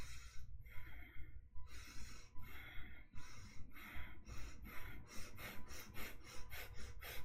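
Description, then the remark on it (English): Rapid, shallow breaths rasp in and out, speeding up into quick panting puffs toward the end, like hyperventilation, as a demonstration of breathing in and out too shallowly. No one speaks. “Because, see, what happens is when you breathe in, if you're breathing in and you're breathing out too shallow, what ends up happening is this.”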